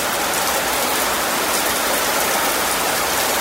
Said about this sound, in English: That is obviously rain.